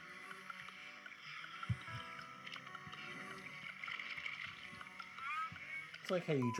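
Wet gulping and swallowing sounds, like someone drinking water, used as a sample at the start of a music track, with a few deep low thumps over a dense, busy background that rises and gets louder toward the end.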